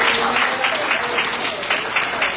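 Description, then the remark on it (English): A crowd of young people clapping their hands together in praise, in steady, rhythmic unison, a bright, continuous patter of claps at moderate loudness. “Our young people are hand clap of”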